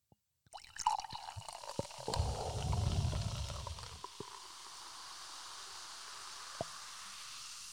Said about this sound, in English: I'll pour myself some more champagne. Oh, that sounds lovely. Sounds really fresh. Champagne shower. Could you pass me your cup? Fill it up.